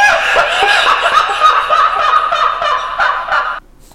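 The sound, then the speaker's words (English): A creepy, cackling horror laugh sound effect rattles on for about three and a half seconds, loud with a rapid, warbling pulse, then cuts off abruptly into near silence. “Creepy laugh.”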